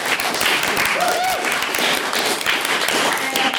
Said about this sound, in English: Thank you very much. And can we give Stephen another round of applause for his maiden speech?